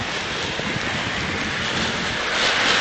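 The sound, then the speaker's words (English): Steady rain on a morning walk near the original Camp King site in the north end of Oberursel, by a train station, just after it started raining, makes a continuous, dense hiss that holds at a fairly even level throughout and swells slightly toward the end. No one is speaking. “We've walked down here and the rain just started.”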